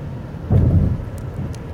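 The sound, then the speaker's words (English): A low rumble of thunder swells briefly over a steady wash of rain on a rainy day, with a few sharp droplet ticks standing out near the end, moderately loud and with no one speaking. “today was kind of a rainy, introspective kind of day.”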